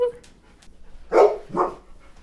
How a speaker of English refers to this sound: Queso is just randomly barking in the kitchen. She wants more snacks.